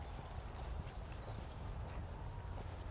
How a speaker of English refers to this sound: You can kind of hear something tweeting at the top of the tree to the left. And the wind with the leaves, because it's starting to be like full soon, so you can like hear the wind and the kind of leaves.